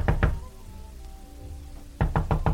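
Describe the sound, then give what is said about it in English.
A neighbor who lives in the top half of the house knocks on a door: two firm raps, a pause of nearly two seconds, then four quick, heavy knocks in a steady rhythm. A faint low hum fills the gap between them. “Mr. Fetta, if you don't open this door, I'm going to call the police.”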